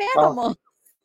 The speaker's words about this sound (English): So there's dogs over there.